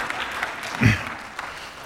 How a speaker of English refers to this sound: Oh, of course you're going to applaud.